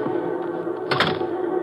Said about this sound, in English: I continue my search of the room until I hear a key in the lock.